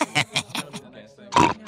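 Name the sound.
pig oinking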